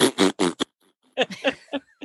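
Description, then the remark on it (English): A voice imitates a fart with a quick run of four buzzy, snorting bursts, a short pause, then several more squeaky, higher-pitched puffs, fairly loud and without any words. “I try to hold it in to be respectful, but then I always, just before I'm holding it in, I laugh, and then it comes out like...”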